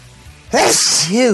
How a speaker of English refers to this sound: That's you. Oh, I always sneeze in twos.